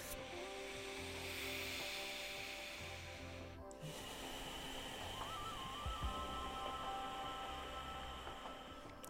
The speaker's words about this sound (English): Now the next step is to close your lips and breathe through your nose. So the sound is in the back of your throat. It's a slight contraction around the glottis.